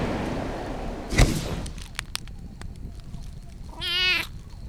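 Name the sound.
kitten mewing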